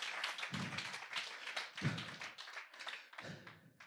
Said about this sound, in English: Oh, come on, let's give God a round of applause.